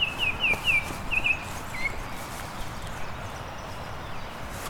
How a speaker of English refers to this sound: This is a very subtle song, but it's a very colorful bird. It's yellow with black streaks, orange on the face, black on the head. Very high-pitched song.